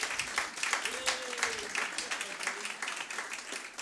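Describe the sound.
An audience applauds, a dense, steady patter of many hands clapping that holds for about four seconds, with a faint voice briefly audible beneath it.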